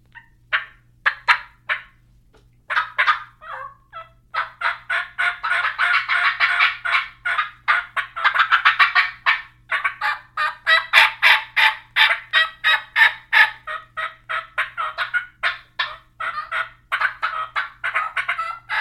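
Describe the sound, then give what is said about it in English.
A turkey's sharp putts and rolling purrs run into a fast, excited run of high kiki yelps and cackles, pulsing rapidly at full volume for most of the stretch. No one speaks. “So we're going to close this out on a putt-purr, kiki cackle cluster and a putt-purr pitch-down combination.”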